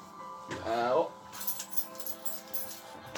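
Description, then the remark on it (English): Keys jangle and clink in a run of quick, uneven rattles, with a brief voice sounding just before the jingling starts. “What are you looking for? Keys.”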